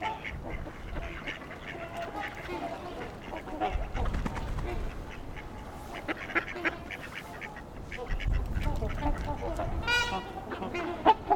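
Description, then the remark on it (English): A flock of friendly, often-fed male and female mallard ducks, including at least one American black duck–mallard hybrid, quacks and chatters, overlapping calls in an irregular stream with bursts of louder activity, amid outdoor background noise and faint small-bird chirps. “A mix of male and female mallards. And at least one hybrid American Black Dutch mallard.”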